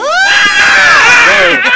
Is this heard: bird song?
no